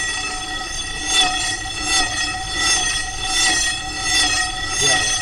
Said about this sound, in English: and I'm going to swing this rope around my head. So the speaker is swinging around my head as it plays this noise. So I'll start the noise.